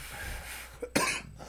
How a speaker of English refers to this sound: See, he coughing. I would have been dead.